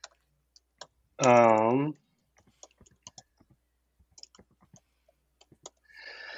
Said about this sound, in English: I could type something, right? I'm typing, yep.